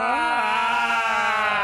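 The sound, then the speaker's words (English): A person imitates a Klingon death scream: one loud, sustained, raspy howl that rises briefly in pitch and then holds a steady, harmonically rich tone for almost two seconds. “But let's mark this momentous day by screaming for dead Klingons.”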